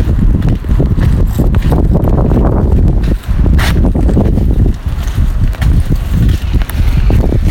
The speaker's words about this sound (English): Windy here.